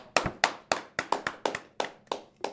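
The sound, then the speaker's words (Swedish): A few people clap briefly for a guest in the New Black shop on Maria Prästgårdsgata 15 at Mariatorget: about nine sharp, slightly uneven claps over a couple of seconds with no voices over them. “Jag vet inte vad vi applåderade egentligen åt, om det var din omtagningen eller om det var faktiskt att du är här.”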